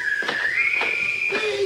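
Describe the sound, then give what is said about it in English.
Several people whistle a tune together: a clear, high, sustained note slides slightly upward and holds, joined near the end by a lower whistled tone, over soft rhythmic bursts of background sound. “They're all whistling.”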